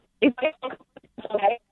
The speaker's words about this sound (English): I mean, you're in of all the places in the world you could go to call me, you pick a place where the phone is cutting in and out.